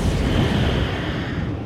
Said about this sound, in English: Man, if we had some like cool editing or this would be the time for like some kind of sound effect, an explosion perhaps.